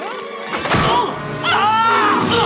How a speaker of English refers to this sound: Paint can to the face. Heads up!